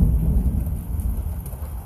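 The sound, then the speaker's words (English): Steady rain pours down in a continuous, dense hiss with a deep low rumble beneath it, fairly loud, with no voices. “Hey guys, I had to come back and just chill with me while it's raining.”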